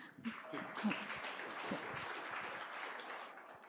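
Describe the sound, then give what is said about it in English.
An audience applauds in a dense, crackling wash of many hands clapping, swelling quickly at the start and holding steady for several seconds before easing slightly at the end. “Sorry, I didn't mean to shut down the applause.”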